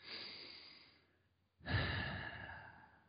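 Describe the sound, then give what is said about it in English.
A deep, audible breath: a long airy inhale that tapers off, a brief pause, then a stronger, heavier exhale like a sigh. No one speaks. “Doesn't it feel so goddamn good to breathe?”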